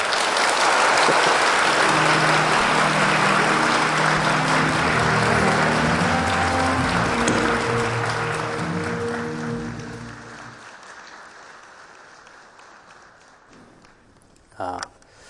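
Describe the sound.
A crowd claps loudly and steadily for about ten seconds, then the applause thins out and fades into near silence, with a brief knock near the end. Faint voices sound beneath the clapping.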